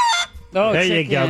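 A chicken clucking sound effect: a short high squawk, then a longer, drawn-out loud cluck and a final brief one, with no talking over it.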